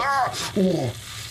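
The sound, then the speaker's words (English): A brief hissing sizzle as a man puts a first aid patch on himself bursts out between two pained, sliding vocal whines, the second lower and groaning, all over in about a second. “And you hear as he puts this patch on himself, it sizzles so uncomfortably.”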